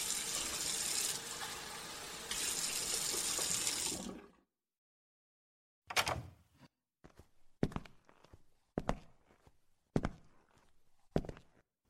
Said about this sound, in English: I wiped my lips and turned on the faucet. I rinsed my mouth out.